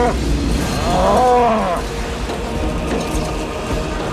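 A cow lets out a single drawn-out, loud moo, rising then falling over about a second, followed by steady outdoor background noise.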